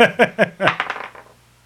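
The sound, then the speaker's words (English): Dice clatter across a hard table, a quick run of sharp clacks that speed up and fade as they settle, coming to rest showing a two. Fairly loud, with no voices. “And a roll two. The two on the dice.”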